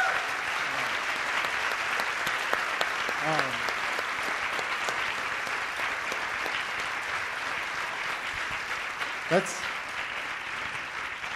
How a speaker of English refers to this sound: That's a top-notch applause right there. That's a grade-A applause.